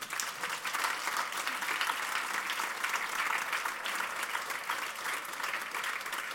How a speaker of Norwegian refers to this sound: Vi skal si tusen takk til Sigrun Aasland og Sigbjørn Aanes. Gi dem en stor applaus.